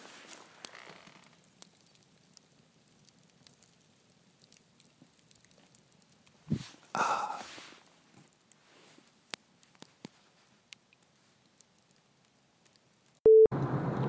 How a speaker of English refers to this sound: All right, a little more campfire sound, and then we'll sign off. Here you go.